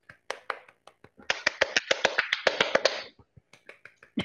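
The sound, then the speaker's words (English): Hand claps from a single person giving a round of applause, starting scattered, speeding into a quick steady run of sharp claps in the middle, then slowing to a few spaced claps at the end. “I'm doing a round of applause for Abu”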